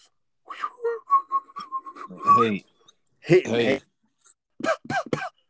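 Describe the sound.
A person whistles a quick run of short, steady notes, imitating an NFL football zipping through the air on a pass, followed by a few bursts of voices talking.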